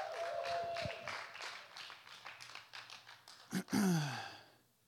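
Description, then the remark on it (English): An audience claps steadily in a dense patter of many hands for a few seconds, capped by a brief loud burst with a descending whooping tone before the sound fades. “Can you give Brother Austin a round of applause?”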